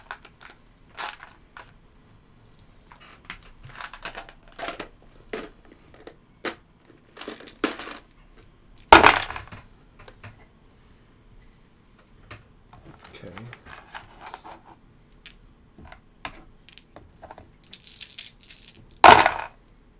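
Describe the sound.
Dice being pulled rattle and clack in scattered bursts of sharp little clicks, with two louder clattering throws standing out, crisp, while faint voices murmur in the background.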